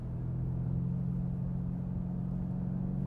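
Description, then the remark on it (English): A car engine drones at a low, steady pitch, loud, with a constant throaty rumble and no clear rise or fall in revs as the car downshifts by itself. No one speaks. “I'm not downshifting. It's doing it.”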